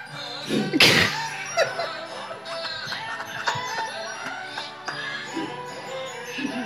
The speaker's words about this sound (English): I'm looking at the screen and this says, "We wish you a Merry Christmas, Goat Edition." Is this screaming goats made to sound like "We wish you a Merry Christmas"?